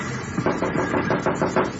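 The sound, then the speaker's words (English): A quick series of about six firm knocks on a train compartment door, evenly spaced, with no voices during the rapping. “Yeah, it's locked. Knocked.”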